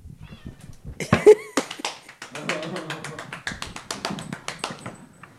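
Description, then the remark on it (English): A rapid string of sharp hand claps, roughly four a second, carries on for several seconds, while a hungry, not-yet-fed cat meows loudly near the start. “Can I clap?”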